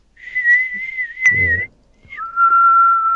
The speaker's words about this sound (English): who can whistle 2600 hertz thing?